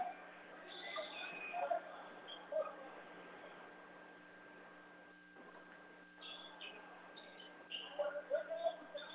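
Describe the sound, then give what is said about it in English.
Scattered high, chirping sneaker squeaks on a basketball court during a game between the Blue Devils and the Canton Bears, in short clusters over a steady murmur of gym noise and low hum, with a quieter stretch in the middle. “Lots of squeaks of the snakes.”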